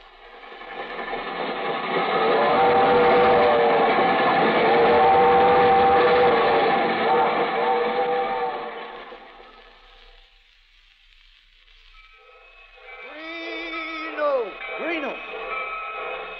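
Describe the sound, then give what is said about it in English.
A train rumbles and hisses loudly as it pulls out of a station on track 6, the heavy noise swelling for several seconds and then fading away, followed by brief warbling tones. “The Albany Special leaving on track 6.”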